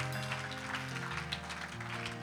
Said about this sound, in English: Give him one more hand clap of praise. Thankful for him this morning.